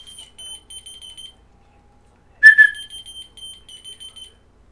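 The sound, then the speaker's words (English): Rapid high-pitched electronic beeping plays in bursts, pauses, then a person gives a short, loud whistle, and the key finder, a device called Key Finder bought at the dollar store, answers with another run of chirping beeps. “So it responds to whistle.”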